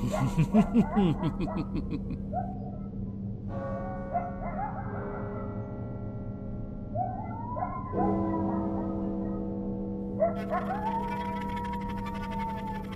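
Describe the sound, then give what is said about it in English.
An animal howls at midnight: several long, rising, wavering howls repeat over a steady low hum, after a burst of choppy yelping at the start. The howls sound clear. “Sounds like someone's ready for dinner, if you ask me. Though most of our guests don't usually howl for it.”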